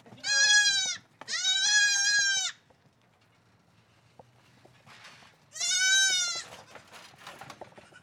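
Goats kept in a backyard, including young kids, bleat three times in loud, drawn-out, wavering cries, two close together and one after a pause, with faint rustling and quieter background noise between calls.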